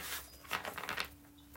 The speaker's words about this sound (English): One more good shuffle, and then we will get started with the reading.